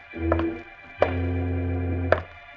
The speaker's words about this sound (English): Frozen with fear, the little midget and Jimmy Olsen listen as the heavy thumping steps of the man Freddy says is the dreaded boot approach their door.